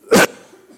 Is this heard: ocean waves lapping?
no